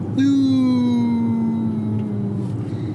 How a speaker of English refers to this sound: That's the sound this car makes, because it doesn't make much real sound, so it's got an artificial sound. And occasionally it sounds like a police car in the distance.